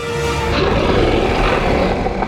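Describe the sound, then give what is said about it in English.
A deep, rough wolf growl rumbles on without a break for a couple of seconds, loud and gravelly with a steady low roar and no voices. “A growl ripped through the air.”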